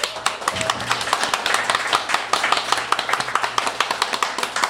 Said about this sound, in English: So by a round of applause, how many of you believe in ghosts?